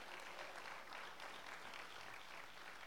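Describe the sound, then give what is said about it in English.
An audience claps hands in praise to the Lord, a dense, steady wash of many hands applauding at an even loudness throughout, with no voices standing out. “And if you want a blessing for your city and for your brothers and sisters, if you want a demonstration today, I wonder if we could just give the Lord a hand clap of praise.”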